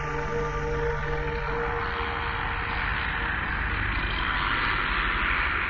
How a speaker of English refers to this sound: Use a chainsaw sound effect for that and kind of blended it in with the music. I wanted something gritty to open it up, you know?